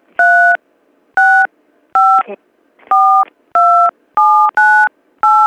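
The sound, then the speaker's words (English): Eight touch-tone phone keypad beeps as a caller types in a tracking number during a customer service call, each a loud, clean dual-pitched tone lasting about a third of a second, the last few pressed in quicker succession. “Please do not type the numbers.”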